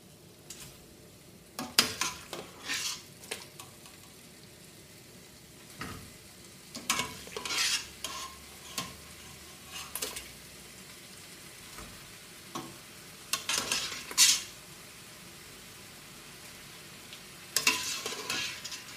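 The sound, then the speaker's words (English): Chicken frying in a pan over relatively strong heat: a steady sizzling hiss underneath, punctuated by irregular scraping and stirring clatters from a utensil against the pan, with no talking. “Use relatively stronger fire and put the chicken in.”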